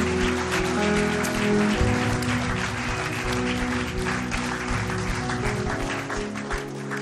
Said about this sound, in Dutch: Come on, won't we give these guys a hand? Laten we ze een applaus geven.